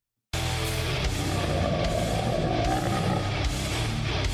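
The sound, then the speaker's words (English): Tim 'the Toolman' Taylor from the show Home Improvement lets out a long, loud, rasping burp that rumbles continuously for about four seconds with a gritty, low-pitched texture and no talking. “That's Tim the Toolman Taylor from Home Improvement burping.”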